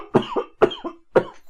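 cough

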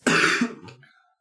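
coughing and throat clearing

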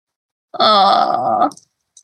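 cat yowling

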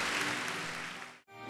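audience clapping

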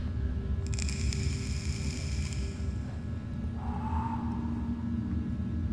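inhaling

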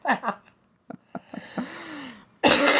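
cough

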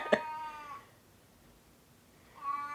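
cat yowling

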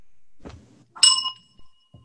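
bell ringing

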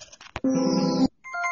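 telephone ringing

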